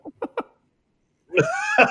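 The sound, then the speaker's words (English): A sneeze: three short, sharp catching breaths in quick succession, a brief pause, then a loud, drawn-out voiced burst that rings with a strong tone before cutting off. “So, well, wait, I got another sneeze.”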